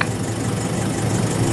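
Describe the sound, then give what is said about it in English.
A voice imitates an idling police car engine with a steady, rumbling drone that holds an even loudness throughout the brief moment, with no words spoken. “Yeah, turn the car off. No car would sound like that.”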